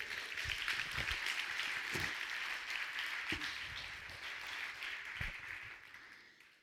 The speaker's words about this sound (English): Right? Amen? Get a little hand clap.